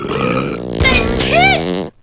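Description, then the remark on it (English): A voice imitates a combined sneeze, fart, cough and burp as one loud, gravelly blast with a couple of raspy bursts, lasting about two seconds before cutting off. “And then, you just let out the biggest sneeze, fart, cough, burp.”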